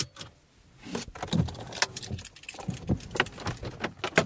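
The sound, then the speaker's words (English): Someone opens a car door and gets in: keys jangle, clothing rustles, and a few sharp clunks and clicks from the door and seat come in an irregular burst, with no one talking. “Should I get in? Yeah, get in my car.”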